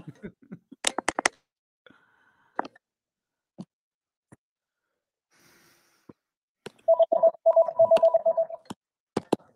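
household object, phone ringing

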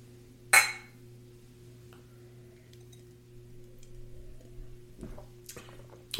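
household object, glasses clinking

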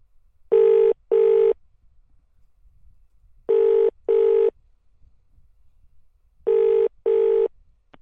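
signal or alarm, telephone line ringing

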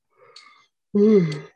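human body sound, big yawn

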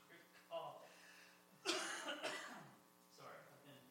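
human body sound, persistent cough

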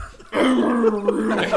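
human body sound, throat clearing

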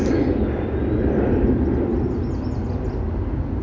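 vehicle, airplane flying overhead

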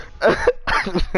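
human body sound, hiccup

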